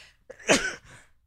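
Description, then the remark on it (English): A single sharp sneeze bursts out, a quick breathy intake followed by an explosive hissing release that trails off into quiet. “Bless you. Pardon me.”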